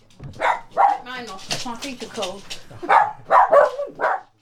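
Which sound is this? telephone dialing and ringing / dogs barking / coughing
dogs barking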